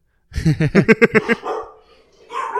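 dogs barking

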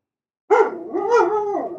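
dog barking

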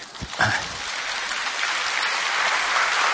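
audience applause

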